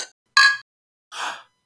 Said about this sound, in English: Your clink was better than mine. Mine was too quiet. I was afraid of spilling.